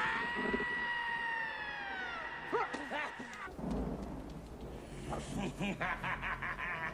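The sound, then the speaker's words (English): A loud, shrill human scream slides downward in pitch for about two seconds, then gives way to short voiced outbursts over a low rumbling background. “Oh, come on, you scream like a girl.”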